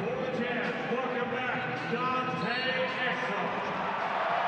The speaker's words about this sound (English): Crowd gives Dante a cheer.